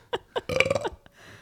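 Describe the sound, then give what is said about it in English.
A loud burp by a co-host rumbles into the microphone after two short gulping sounds, with a faint click at the end and hiss trailing off. “What is with me and getting co-hosts of podcasts who burp into a mic?”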